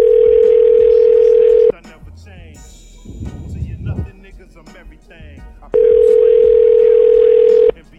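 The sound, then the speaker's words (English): An outgoing phone call rings twice on the line, each steady, loud two-second ringback tone followed by a long pause filled with faint, muffled background noise. “So happy it rings.”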